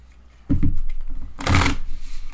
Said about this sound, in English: Still not feeling it. Better shuffle one more time.